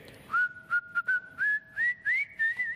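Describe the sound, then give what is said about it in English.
A person whistles a cheerful tune, depicting Zacchaeus whistling as he comes around the corner, a bright melody of short and held notes that climbs gradually in pitch, heard clearly with no talking. “Can you imagine Zacchaeus, little short fella, born again, and instead of coming around the corner with the normal face that he has, he's whistling because he's been born again.”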